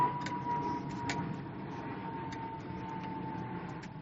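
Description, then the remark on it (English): An airplane passes overhead as a steady, broad low rumble that fades slightly, with a thin sustained whine above it and a few faint ticks. No one speaks. “And I'm using up my one plane passing moment right now.”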